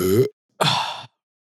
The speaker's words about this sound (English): It's not like meat. That's a meaty burp.